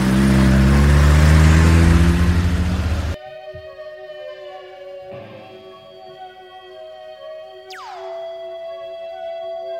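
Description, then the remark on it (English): A loud car engine roars and revs for about three seconds as the car drives off, then cuts off abruptly into steady sustained tones with a sweeping, falling whoosh near the end. “Well, listen, why don't I give you a lift and then we can talk about this state business in the car.”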